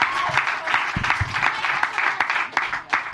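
Steady audience applause, a dense wash of many hands clapping at a fairly loud, even level throughout, with a few sharper individual claps standing out.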